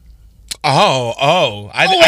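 A sharp intake of breath breaks into a loud, theatrical, drawn-out vocal gasp that swells and dips in pitch over about two seconds, close to the mic with no other talk.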